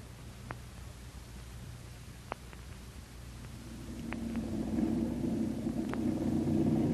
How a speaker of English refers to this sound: There they are. Four good planes with their engines warm and filled with gas, we hope.